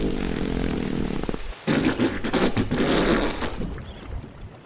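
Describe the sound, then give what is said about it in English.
Two long, loud fart sounds in succession, presented as humpback whales from a pod approaching a boat communicating by farting, one answering the other: first a low, steady buzzing one, then after a brief gap a wetter, sputtering, bubbly reply. No one speaks. “Do humpback whales communicate by farting? Yes, one will fart and another will fart back.”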